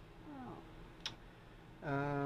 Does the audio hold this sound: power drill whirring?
no